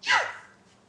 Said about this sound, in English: You all right? Yeah, I'm sorry. What was that, a sneeze? It was a cough. Or a gasp. It was a cough. Sorry.